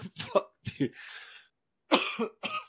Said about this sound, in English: I've been like sick for 2 weeks. This fucking cough.